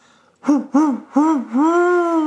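A voice imitates an owl's hooting: three short, rounded hoots followed by one long, drawn-out hoot, fairly loud and mid-pitched, with no other sounds around them.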